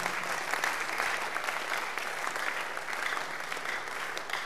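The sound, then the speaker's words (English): An audience claps steadily throughout, a dense, even wash of many hands with no pauses and no voices rising above it. “Oh, the way you are clapping.”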